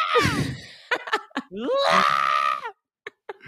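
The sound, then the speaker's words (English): A man at a McDonald's screams loudly as police tase him, in two long, strained howls, with brief choked gasps and yelps between them, ending in a few short panting sounds. “If you look at McDonald's guy gets cold fucking tased, it's going to pop up because he screams like fair, a fucking bitch.”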